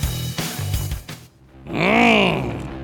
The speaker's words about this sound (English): But one thing that hasn't changed, the roar of its engine. Is there anything more iconic than that sound from Mustang? No, I don't think there is. I mean, from the very beginning, you know, it's always been just cool.